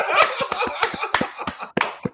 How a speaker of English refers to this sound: Listen, can we give it up to the white man coming back in Virginia, man? Yeah, clap it up, y'all.